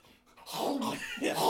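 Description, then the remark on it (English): A person imitates a pug barking like Gollum: a raspy, gurgling bark in two drawn-out, growly bursts, fairly loud after a brief quiet start. “Or a normalized pug that barks like Gollum.”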